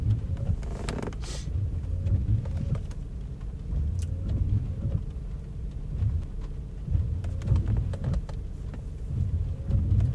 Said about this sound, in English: There's so many cars here. This is the cheap section of the parking.